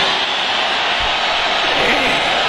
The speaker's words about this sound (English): Listen to that crowd. We play that. That's from pre-COVID, obviously. Play that only to remind you what Donald Trump is missing.